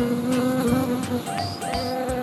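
A housefly buzzes steadily in flight, a continuous droning hum with a slight wavering in pitch, heard on its own without any voices.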